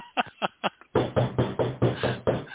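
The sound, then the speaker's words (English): Four quick, crisp knocks on a door, then a louder, heavier run of about six rhythmic thuds in steady succession, with no voices. “Who's that at the door?”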